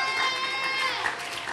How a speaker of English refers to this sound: Yay. Yeah, give him a cheer. Yay, God.